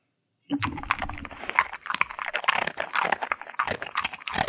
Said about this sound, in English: That's the dog treats. That's the dog treats. Very good. Is this all Lily? All Lily, yeah.